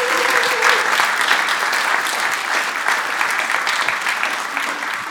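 A crowd claps steadily and loudly for several seconds as two people are brought up, dense overlapping applause without a break, with no one speaking over it.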